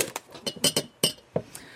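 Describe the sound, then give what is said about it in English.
Glass clinks in a quick irregular run of bright chinks and taps like bottles and glasses knocking together as a bottle is opened, with no voices, settling into a couple of lighter touches at the end. “I'll open the bottle.”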